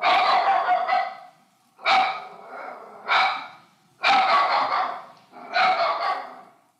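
A dog barks loudly in a series of about five drawn-out, harsh barks with short pauses between them, no voices present.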